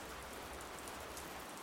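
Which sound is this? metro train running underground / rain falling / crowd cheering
rain falling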